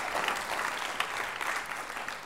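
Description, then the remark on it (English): An audience in the room claps steadily for a couple of seconds as a welcome for everyone, a dense, even patter of many hands at moderate loudness with no voices over it. “Come on, let's give a little clap for everyone.”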